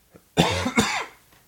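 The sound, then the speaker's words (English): Two sharp, harsh coughs in quick succession, fairly loud, with the second trailing off into a raspy exhale. No talking. “I just hope that I don't forget to hit the cough button, because we'll have to stop the show.”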